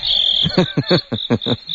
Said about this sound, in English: Yes, the crickets are out, you know, talking.